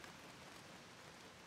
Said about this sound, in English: The rain is slackening at last, and its slow stopping, like its previous thrumming beat, is trying to tell me something. The rain, stopping.